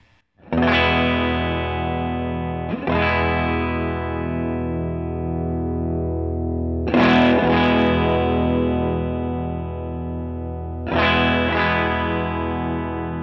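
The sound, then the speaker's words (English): Overdriven electric guitar chords ring out through a boost pedal with its boost set at 12 o'clock, struck four times and left to sustain, with the tone gradually shifting as the pedal's EQ knob is swept; no talking. “In fact, I'll knock it back to actual 12 o'clock, and let me sweep the EQ and let's see what that does.”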